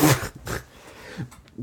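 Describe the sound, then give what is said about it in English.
A couple of rough, gurgling burps erupt in quick succession, followed by a few softer, low throaty croaks that trail off. There is no talking. “Sorry, I'm fucking burping.”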